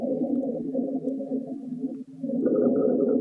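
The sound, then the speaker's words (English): Low, coarse rumbling rhonchi lung sounds with a continuous snoring, gurgling quality, sustained throughout with a brief dip midway, then a louder, slightly higher-pitched stretch toward the end. “Those are pretty severe ronchi.”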